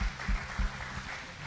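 A crowd claps together in a steady, dense patter of applause at a church service, with a few low thuds underneath and no one speaking.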